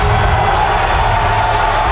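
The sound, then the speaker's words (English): A dense, steady roar of the year's biggest crowd cheering on its feet as a Western Kentucky basketball game gets underway, loud and continuous with no breaks, a wash of many voices and shouts blending into one sustained noise. “Biggest crowd of the year on its feet as this one gets underway.”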